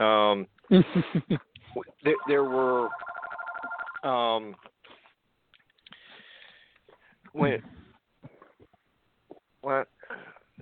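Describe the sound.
A telephone rings in a short warbling burst, fairly loud, surrounded by brief voice-like sounds, followed by a few faint, scattered noises.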